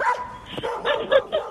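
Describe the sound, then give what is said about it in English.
Dogs bark in a quick series of short, high yapping barks, moderately loud, with no voices over them. “Dogs, if you can hear me, bite her.”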